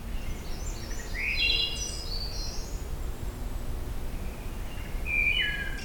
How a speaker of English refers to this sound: Just watch a chipmunk make a bird-like song or call.